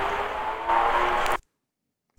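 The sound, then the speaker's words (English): A motorbike engine roars steadily by a dolmen, growing a little louder as it passes, then the sound cuts off abruptly into silence. “Shame about that motorbike.”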